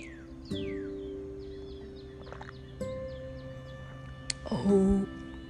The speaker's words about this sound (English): OMG, I am in my Garden of Eden, and you can tell just by the sounds of the birds that I am truly in my Garden of Eden right now.